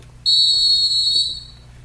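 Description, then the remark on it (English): A single shrill whistle blast starts abruptly and holds steady for about a second and a half before trailing off, loud, with no talking over it. “He had to find his whistle.”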